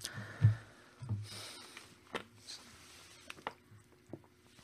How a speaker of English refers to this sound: I'm boring today, just drinking water.